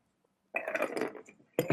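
Someone chewing ice: a crunchy, clinking burst lasting about a second, then a brief pause and another short crunch, fairly loud with no talking.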